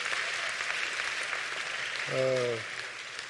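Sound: audience applauding the choir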